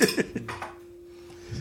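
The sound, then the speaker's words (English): A single bell ding with a short burst of clattery sound at the start, then one steady mid-pitched tone that rings on for over a second before stopping. “Throw the bell.”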